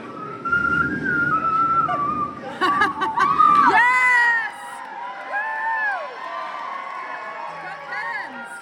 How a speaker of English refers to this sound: Bring the mic back. Oh. Actually, first he has a specific whistle for you.